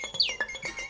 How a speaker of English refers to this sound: It's birds.